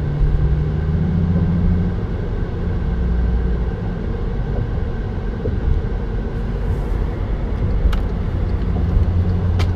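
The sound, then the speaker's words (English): Steady low rumble of road traffic, cars moving along highway 288, heard from inside or beside a vehicle with constant engine and tire noise and no talking. “And got a little traffic right there off of 288.”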